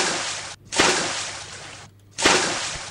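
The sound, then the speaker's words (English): Loud splashing of water in broad rushing bursts from someone swimming in a pool, each burst starting sharply and fading, with brief pauses between. No voices. “Hey, why are you swimming just behind me?”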